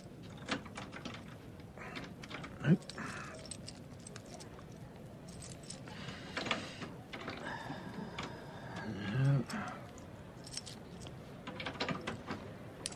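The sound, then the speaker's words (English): Metallic clicking and scraping as a key is forced and twisted in a door lock, with a sharp snap partway through as the key breaks, and more rattling jiggles after. “Yes, I broke the damn key.”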